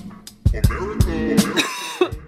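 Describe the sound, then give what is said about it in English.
A loud fit of coughing: several harsh, raspy bursts in quick succession with voiced, throaty stretches between them, and no other sounds around them. “The sound of the cough means we're back from break.”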